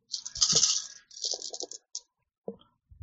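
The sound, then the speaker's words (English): A handful of ten dice clatter and rattle across a hard surface in two quick bursts during a tabletop role-playing game, followed by a few sharp final clicks as they settle. No one speaks. “So roll 10, keep 2, and one of these dice will explode.”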